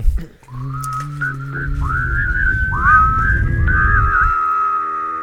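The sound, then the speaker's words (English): Someone tries to hum and whistle at once: a low steady hum beneath a wavering, slightly breathy whistle that slides and wobbles in pitch for about five seconds, with no talking. “I was trying to hum whistle and it wasn't working, and boom, you were right there, so I called you.”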